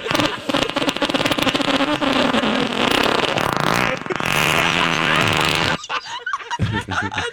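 A long, loud, buzzy fart rumbles for several seconds, rough and sputtering with a raspy tone that shifts pitch toward the end before cutting off abruptly, followed by quieter faint noises.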